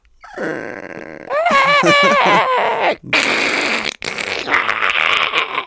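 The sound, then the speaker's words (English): A voice imitates Godzilla's roar, starting with a low rumbling growl, then rising into warbling, pitched screeches and harsh, loud bellowing bursts broken by two brief pauses. “That's some Godzilla noises.”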